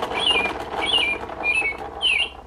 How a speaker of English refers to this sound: The bird says.